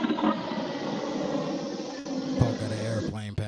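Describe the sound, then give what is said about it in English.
A loud, steady roar of an airplane passing low, directly over a house, fills the whole clip, with a voice briefly starting up underneath near the end. “So, where I live at, planes fly directly over my house.”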